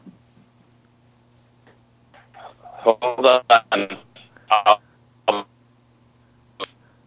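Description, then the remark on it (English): A voice comes through a bad cell phone connection, garbled and robotic, breaking into choppy bursts with unintelligible words over a steady low electrical hum. “it was kind of like we had the discombobulated robot voice going on there for a minute”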